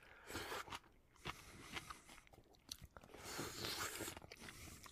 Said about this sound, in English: Just eating. Slurping. Just chowing down nomming. Into the mic.